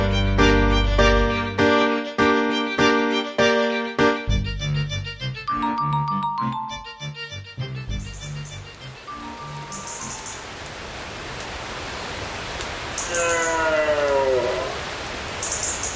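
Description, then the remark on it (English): Hard rain falls in a steady, dense hiss at the edge of a forest in Glen Affric, Scotland, in an early October recording by Chris Watson, following a few seconds of fading instrumental music; brief chirping bird calls ring out over the downpour near the end. “We leave you this week with a hard rain falling on the edge of a forest in Glen Affric, Scotland.”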